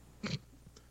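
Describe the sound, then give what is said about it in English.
A single quick gulp of a beverage, followed by a few faint throat and mouth sounds in otherwise quiet surroundings; no one speaks. “As she drinks. So, yeah, as I take a drink.”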